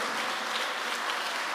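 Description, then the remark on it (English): A crowd of people clapping their hands together during a prayer, a dense, steady wash of overlapping claps, moderately loud and sustained with no voices standing out. “as I lift up my voice and I clap my hands, let them scatter by fire. Clap your hands.”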